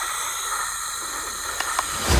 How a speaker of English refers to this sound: I can provide sleep sounds if you like. I have several options. Summer night, ocean paradise, whale calls. No, no. White noise is fine.